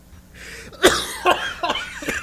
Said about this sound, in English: Still got the COVID cough a little bit.